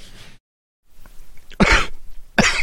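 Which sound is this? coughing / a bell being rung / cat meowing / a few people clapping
coughing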